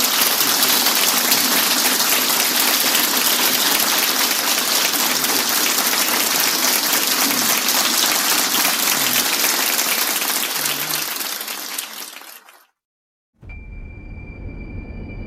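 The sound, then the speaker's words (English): Sustained audience applause for the guests, a dense wash of clapping from a large crowd that holds steady for about twelve seconds before quickly fading out, followed by a brief silence and a low hum. “Let's give our guests a round of applause.”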